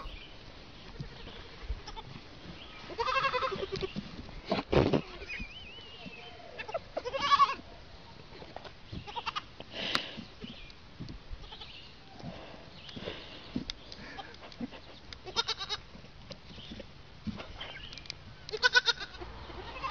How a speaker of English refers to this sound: And it's a group of baby goats. Some of you may have seen this. Group of baby goats, and one of the goats is just super, super happy. You'll be able to tell which one.